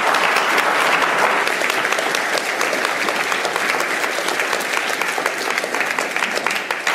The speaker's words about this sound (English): But thank you so much for letting us share. Would you clap one time?